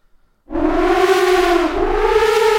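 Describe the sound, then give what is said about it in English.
A loud synthesizer tone from a VST plugin patch called 'Elephant', meant to imitate an elephant's trumpet, bursts in and holds steady, a brassy, siren-like blare with a slight dip in pitch midway, no voices. “I think this one is supposed to sound like an elephant, obviously, but Elephanta.”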